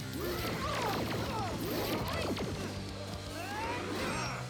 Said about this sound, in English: As we all know, when your punches sound like laser strikes, that's pretty rough.